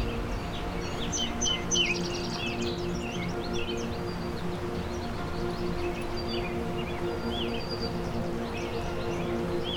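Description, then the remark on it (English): A palm warbler sings a quick, high trill amid scattered chirps from other birds, over a steady low background hum with no talking. “I also have a palm warbler here.”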